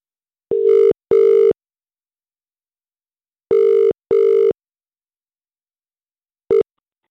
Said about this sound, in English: So if you have sent the text, I hope you're watching your phone. And I hope you pick up within five rings.